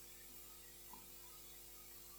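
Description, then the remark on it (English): A steady, faint hiss runs through the whole stretch with a low electrical hum beneath it, constant and unchanging, with no voices or other sounds. “There's a hissing sound.”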